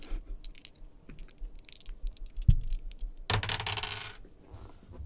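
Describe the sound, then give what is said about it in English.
A pair of small hard dice is rolled across a table, one going under it: a scatter of light ticks and taps, a sharp knock, then a brief bright rattling tumble that settles quickly, with no voices. “I noticed that you held up a pair of dice just then.”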